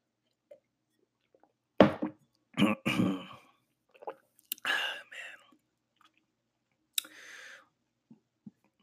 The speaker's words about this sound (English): Just trying to cool down a little bit. Let me take a little sip of water.